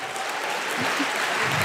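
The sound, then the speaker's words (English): A burst of audience applause, steady dense clapping from a crowd, fairly loud and sustained for the whole short stretch with no voices standing out. “Don't applaud that. Don't applaud it.”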